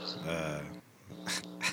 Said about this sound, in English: The birds seem to be doing all right out there, right?